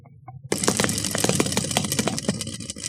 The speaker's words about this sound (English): I'm sorry, I'm hitting that wheel a little bit hard. I might have loosened it a little too yeah, much. Yeah, I feel like I'm like hitting it a little bit hard.